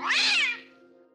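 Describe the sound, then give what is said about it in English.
A single cat meow, fairly loud, rising then falling over about half a second and trailing off into a faint steady hum. “And just for fun, we've got the inside scoop on how to connect with a cat, especially if you're a dog person alone in a room with this.”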